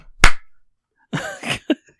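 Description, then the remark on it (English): A single sharp hand clap, made to sync an audio recording, rings out loud and crisp with a quick decay. After a short pause, a brief burst of voice follows with a short vocal sound at the end. “Let's do the clap sync again. It's just a clap to the right.”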